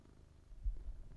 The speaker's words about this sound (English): Here's a little Walter purring ASMR.